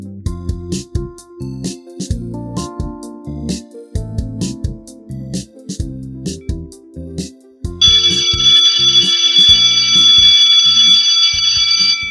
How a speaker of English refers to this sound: That sounds like the school bell, which means it's the end of today's class.